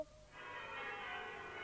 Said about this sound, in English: The churches rang out the lustiest peals he'd ever heard. Clash, clang, hammer, ding, dong, bell.